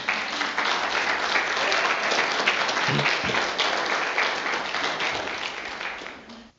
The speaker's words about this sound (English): I think God deserves a round of applause for that.